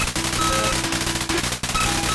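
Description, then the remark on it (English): Rapid, erratic bursts of noisy hi-hat hits from a circuit-bent keyboard, rattling like machine-gun fire over sustained low synth tones, with brief high electronic beeps; loud and continuous, no voices. “And the hats just kind of go crazy like that.”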